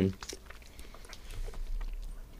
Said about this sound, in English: Feels not chewy enough to be bubblegum. Mm. But is it chewing down to, like, disappearing in your mouth stage? Or the more you chew it... I think it is a bubblegum. It's dissolving, isn't it? It's just like a Zappo.